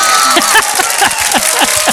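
A loud, steady roar of a cheering concert crowd, dense and hissy throughout, with scattered shouts and whoops rising and falling over the two seconds.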